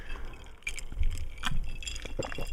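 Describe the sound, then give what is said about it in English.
Glasses clinking together in a toast, a few bright, sharp clinks against a low rumble of background noise, with no talking. “Here, cheers to that, man, because that's a lot of hard work.”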